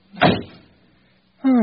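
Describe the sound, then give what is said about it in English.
A car door shuts with one solid thump that fades over about half a second, then a man's voice starts speaking right at the end. “Come on, get in the car.”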